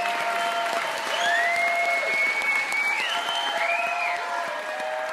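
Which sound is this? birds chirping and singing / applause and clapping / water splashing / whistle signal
applause and clapping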